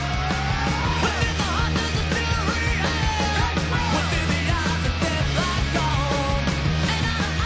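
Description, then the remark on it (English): A loud, dense punk rock track, the opening track of an album released April 17, 2001, with super simple driving drums and distorted guitars, and raw screamed vocals riding on top of the wall of sound throughout. “Just want to get to a screaming bit here.”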